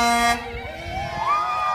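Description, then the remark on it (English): A loud Pepsi truck horn blasts once, a brief steady honk that cuts off, followed by the rumble of traffic and a rising engine or tone as the truck passes. “Just got a nice honk from the Pepsi truck.”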